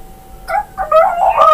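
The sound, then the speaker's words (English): A person imitates a chicken with a few short, nasal clucking bursts that run together into a louder, higher squawk at the end. No words are spoken. “You're not a chicken.”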